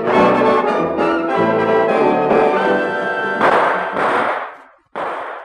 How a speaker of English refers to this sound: I figure the shooting's nearly over.